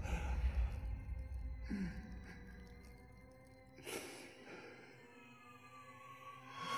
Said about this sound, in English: And Nicolas Cage breathing.